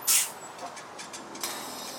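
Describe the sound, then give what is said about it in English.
A bus pulls in at a bus stop with a sharp, loud burst of air-brake hiss, followed by softer repeated hissing over a steady low engine rumble. No one speaks. “Oh, is that our bus?”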